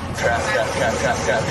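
A large truck engine roars as the vehicle accelerates onto an interstate, a loud, steady rumble with a pulsing mechanical drone riding over constant road noise.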